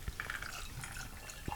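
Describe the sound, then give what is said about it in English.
Black Robert spiced rum is poured into a glass in a brief trickle with soft gurgles and a couple of small clinks. No one speaks. “I'm going to go ahead and pour myself the Black Robert.”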